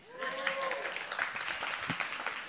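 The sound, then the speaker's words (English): A church audience claps steadily for a couple of seconds for a rock unveiled from under a blanket, a dense, even patter of many hands, with a brief vocal whoop at the start and faint voices mixed in. “Make a note to yourself that today at church you clapped for a rock.”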